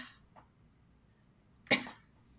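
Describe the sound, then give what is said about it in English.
A single sharp cough bursts out in an otherwise quiet moment, preceded by a faint breathy sound and followed by low background hum. “I'm like, are you coughing? Are you wheezing? What is that?”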